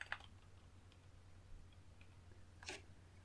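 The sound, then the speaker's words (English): A few faint, scattered keyboard clicks, typing in short bursts with long pauses between them, heard over a low steady hum with no one speaking. “Typing's hard.”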